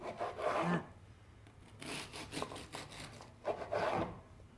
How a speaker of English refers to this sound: But I'm actually, because we've got the crackle on the top, I'm actually going to use a serrated knife just so I don't disturb that crackle.